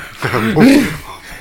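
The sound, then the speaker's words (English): A voice imitates labored, raspy breathing inside a mask: a couple of strained, voiced wheezes with a rising groan in the middle, fairly loud, lasting about a second. “Can you imagine his labored breathing inside that mask?”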